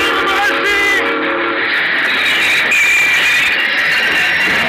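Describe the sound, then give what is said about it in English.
A train roars past, its rumbling clatter steady and loud, while a shrill whistle blows for about a second near the start. “Stop the train, I had to stop the train. This time I knew to stop the train.”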